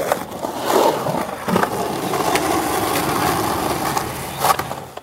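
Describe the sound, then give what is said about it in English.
Skateboarders practicing their moves at China Creek Skate Park, Vancouver's oldest skateboard park, near Broadway and Clark Streets in Mount Pleasant: a steady rolling rumble of wheels on concrete, broken by several sharp, loud clacks and scrapes of boards landing, with no one talking. “Amid the unmistakable sights and sounds of skateboarders practicing their moves, a new plaque was unveiled today at China Creek Skate Park.”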